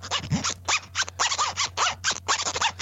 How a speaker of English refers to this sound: But listen, I'm going to give you the beat with the zipper and you make up the song. Go.